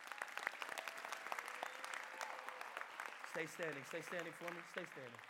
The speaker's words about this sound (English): In Jesus' name, amen. Amen. Can we clap it up?